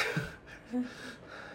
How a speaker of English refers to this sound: You're, like, panting! Like, you're out of breath.